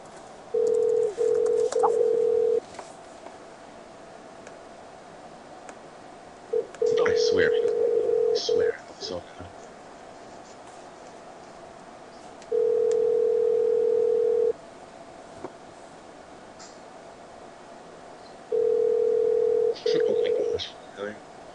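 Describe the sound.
A telephone ringback tone purrs four times on a call that reaches a Sprint voicemail, each steady two-second buzz separated by several seconds of quiet, with faint background noises and a soft voice in between.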